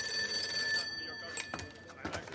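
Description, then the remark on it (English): A telephone at Rocky's Bar Grill Fine Dining rings with a steady, high electronic tone for about a second and a half, then breaks off into muffled background noise and short bursts of sound; Ron, played by Will Ferrell, then gets on the phone. “And Ron gets on the phone.”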